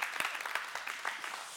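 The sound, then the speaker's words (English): Sparse, uneven clapping from a church audience after worship songs, a few scattered hand claps rising and fading without building into full applause. “It's a half clap thing.”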